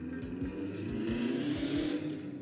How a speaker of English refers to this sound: Oh my God, I hate those cars. Oh my goodness. Like, not the cars in general, just the noises that they make, especially when I'm recording.